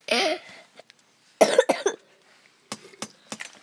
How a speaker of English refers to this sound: Some of the coughing. Well, yeah. The 5-minute coughs.